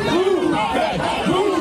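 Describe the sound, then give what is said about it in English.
A crowd of disappointed Philadelphia Eagles fans shouting together in the street at City Hall in Philadelphia, throwing traffic cones and climbing bus shelters; a dense wall of raised voices with rising and falling chant-like yells, loud and continuous throughout. “In Philadelphia, disappointed Eagles fans converged on City Hall, throwing traffic cones and climbing bus shelters.”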